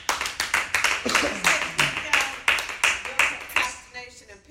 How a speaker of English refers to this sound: All right, yeah, give her a round of applause.